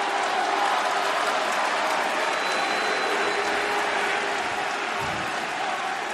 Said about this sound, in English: It's funny I hear boos, but I also hear clapping. That's interesting.